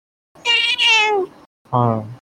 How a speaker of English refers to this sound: Fluffy is just meowing over here. Hey, Fluffy.